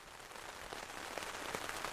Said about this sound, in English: The rain gives us time to take cover and chat.